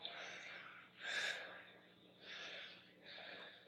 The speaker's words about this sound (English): The fucking breathing. That guy is a fucking promo god.